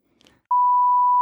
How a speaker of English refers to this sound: That's a beep.